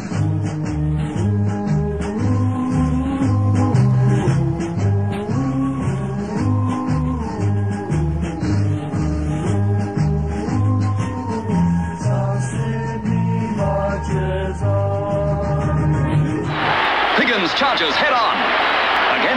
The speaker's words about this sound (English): And now the South Sydney theme song, and those of you in the crowd, lift up your transistors and give out with Up the Rabbitohs. Here's the South Sydney theme song.